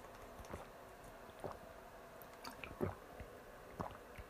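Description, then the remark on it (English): Someone takes sips of water: a handful of soft, wet gulps and swallows spaced roughly a second apart, quiet and without any talking. “Sorry, I gotta get some water right now because when you talk at the level that I do, it does get exhausting sometimes.”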